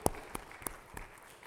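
Sparse, scattered clapping from an audience after the speaker asks how many of them know they are blessed: a handful of separate claps spaced unevenly over a second and a half, quiet, with no voices.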